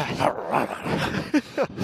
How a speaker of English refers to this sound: By the way, that was little dogs.